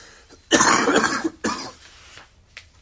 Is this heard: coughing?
yes